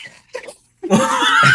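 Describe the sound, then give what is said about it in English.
Someone vocally imitates Ramona's body-horror scream: a couple of soft breathy gasps, then a sudden loud, harsh, high-pitched shriek held for under a second, its pitch rising toward the end. “She screams. She's body horror scream, runs out of the room, goes to the bathroom and looks at herself.”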